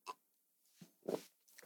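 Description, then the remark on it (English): A woman sips her drink: a few soft, wet slurping bursts, the longest one in the middle, with quiet pauses between and no talking. “She's sipping on her drink and I caught her.”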